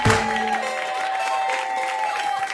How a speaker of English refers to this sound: Put your hands together. Put your hands together. Get ready to clap. Put your hands together. Put your hands together.